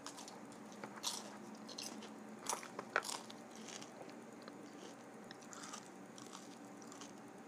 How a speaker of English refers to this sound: Some people like to hear the crunches. There's a whole culture out there called ASMR.